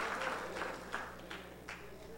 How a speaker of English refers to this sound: Hold your claps.